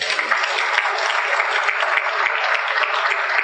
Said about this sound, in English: Just gotten it done quickly because we are givers. Clap for yourself.